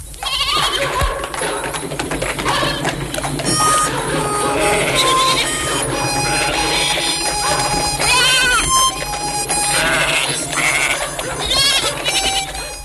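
Farm livestock bleat again and again, their wavering, nasal calls overlapping and rising and falling in pitch over a steady, fairly loud background hum, with no one talking.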